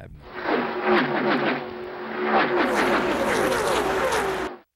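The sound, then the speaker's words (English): A loud NASCAR race car engine roars as the car goes by, a sustained, buzzing howl lasting several seconds with a rush of noise and no one talking. “I mean, the power of a NASCAR when you're kind of close, you can feel the wind and you hear the noise of the car going by.”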